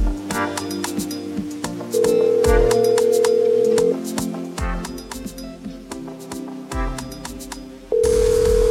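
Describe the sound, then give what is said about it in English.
A telephone call sound effect introducing a caller on the phone lines: a steady ringing tone sounds in two long bursts, with a busy, rhythmic musical backing of clicks and beats throughout. “Let's go to the phone lines.”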